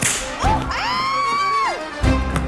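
A whip cracks sharply, then a long whistling swish sweeps through the air before a second crisp crack lands near the end; loud, with no talking.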